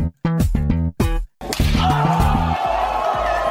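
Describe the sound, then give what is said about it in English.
A short musical theme-song sting: three punchy, pitched stabs separated by brief gaps, then a loud bright crash that washes out over a sustained chord. No one talks. “We still want that sweet Doesn't Slap theme song”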